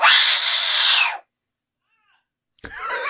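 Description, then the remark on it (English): A loud, harsh printed horn, which took 13 hours to print, lets out a scream-like, shrill blast lasting about a second, then falls silent before a second piercing blast starts up at the end. “Well, it on this side, it sounds like people scream, like just hellacious screams.”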